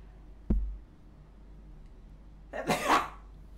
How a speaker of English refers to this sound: but first I'm going to sneeze.